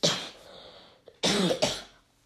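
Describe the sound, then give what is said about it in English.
Three harsh coughs: one at the start, then a pause and two forceful coughs back to back, each a burst of breathy noise that fades away. No one speaks. “For some reason, I've been coughing a lot.”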